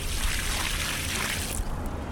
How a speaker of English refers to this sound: Néstor Debuen pours a bucket of water on a parking lot made of Ecocreto. The water disappears instantly, leaving behind just a small wet stain.